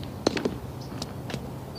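A clock ticks in the left audio channel of a TV drama scene, with a handful of sharp, crisp clicks spaced a little unevenly, standing out alone over a soft steady background hiss.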